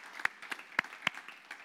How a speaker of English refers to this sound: Let's give God a clap offering. That's a pretty good idea, isn't it? A pretty good plan. Yay, God.